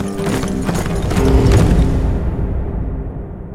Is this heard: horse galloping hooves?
yes